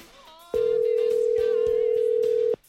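A single long ring of an outgoing phone call placed from a phone during a radio show, a steady electronic tone lasting about two seconds, loud, over faint background music.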